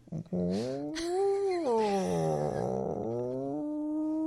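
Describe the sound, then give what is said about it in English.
A person's voice imitates a cat yowling, producing one long, loud, wavering, rising-and-falling moan that lasts about three seconds, heard alone. “It almost sounds like when your cat sees another cat outside.”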